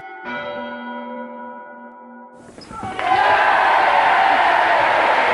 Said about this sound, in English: Fucking doorbell again.